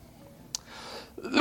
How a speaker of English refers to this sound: Excuse me, I just wanted to cough in the microphone so I'd get your attention back.